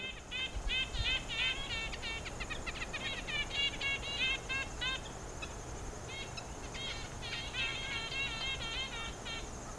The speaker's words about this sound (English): This recording was a black and white warbler.